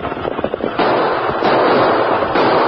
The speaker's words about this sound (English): There it is. Come on. Fire your gun into the air.